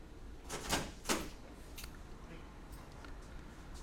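A door being opened, heard as a few quiet clunks and scraping rattles in quick succession, fairly distant and soft against a low background hum.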